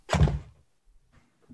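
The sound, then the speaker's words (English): A single heavy thunk rings out as an office chair's height mechanism drops while the chair, which was too high, is adjusted, followed by a second of quiet with faint shuffling and a small creak or knock. “Well, I'm trying to get into this mic a little better, but my chair was too high. I was hitting the keyboard.”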